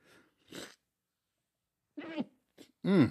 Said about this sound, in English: Bless you.